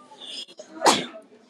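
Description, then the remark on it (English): A single sharp sneeze bursts out into a face mask, slightly muffled, after a brief quiet moment with faint background noise. “Oh, I sneezed in my mask.”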